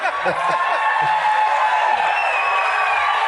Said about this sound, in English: Man, they love that 90s shot culture. That's an applause break for 90s shot culture right there.